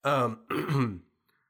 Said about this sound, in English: Because I'm so sorry to the listeners, dude. I know I'm coughing a lot. It's annoying, I know.